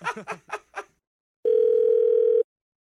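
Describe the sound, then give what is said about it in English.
A short burst of voice, then a pause, then a steady, unbroken telephone dial tone after the other party hangs up, humming at a single mid pitch for about a second before cutting off abruptly. “He hung up.”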